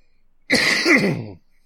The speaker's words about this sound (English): As I then have a hacking cough.